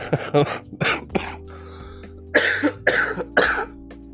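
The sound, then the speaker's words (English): A fit of harsh, raspy coughing from viral pneumonia: a cluster of three or four coughs, a brief pause, then three more forceful hacks in a steady rhythm, with no talking. “If you've ever wondered what viral pneumonia sounds like, that's pretty much it.”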